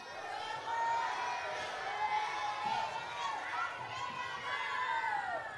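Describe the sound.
A group of children cheer and shout together during a balloon game in which players try to keep two balloons in the air, a steady, lively crowd of high-pitched voices rising and falling for several seconds.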